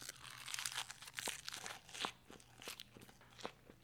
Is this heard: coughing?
no